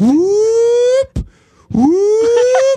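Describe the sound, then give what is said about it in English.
A single voice imitates the roar of a crowd of about 40,000 people at a race when a Jamaican team passes another team, with two loud, rising wails, each about a second long, separated by a brief thump and a short pause. “So there's 40,000 people, and it's intimidating because when a Jamaican team, it doesn't matter which one, passes a team, the crowd makes this sound.”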